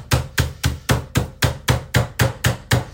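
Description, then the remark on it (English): Chicken being pounded flat: about a dozen heavy, even thumps in a steady quick rhythm, roughly four per second, each a dull thud with a sharp slap on top. No one speaks. “It's already starting to make its way into what looks much more like a flat piece of chicken.”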